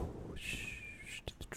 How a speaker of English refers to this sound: What's going on? Is that wind? Yo, it's pretty windy out here. You hear that? It's some wind. The sound of wind.